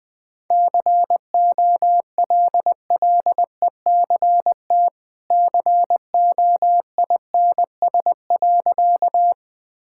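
Morse code at 20 words per minute: a single steady mid-pitched tone keyed into quick short and long beeps, grouped into letters and words with brief gaps, with no voices.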